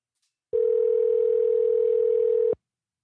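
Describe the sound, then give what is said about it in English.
A single steady telephone ringback tone sounds clearly for about two seconds as Southern Vanguard Radio places an outgoing call to reach a guest for an interview, then cuts off into silence. No one speaks. “Just pick up the phone, dude.”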